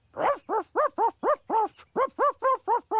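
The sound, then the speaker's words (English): A police dog barks out a simple tune: about eleven short, evenly spaced, clear barks shifting slightly in pitch, with no one talking. “Then he can get a non-violent job, like barking songs on novelty Christmas records.”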